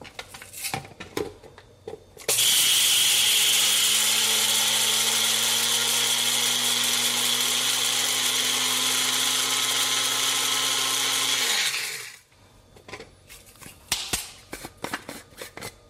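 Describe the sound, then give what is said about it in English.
An electric spice grinder whirs at a loud, steady pitch for about ten seconds, grinding red Sichuan peppercorns and white peppercorns until fine, then spins down; light tapping and clattering come before and after. “I'm gonna get some red Sichuan peppercorns in here, as well as some white peppercorns. And we're just gonna grind this until it's pretty fine.”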